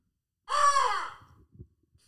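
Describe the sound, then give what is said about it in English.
A voice gives one loud, harsh imitation of a crow's caw, a single drawn-out rasping call, followed by a few faint soft bumps and then quiet. “I don't think crows can speak. As far as I know, crows do this one.”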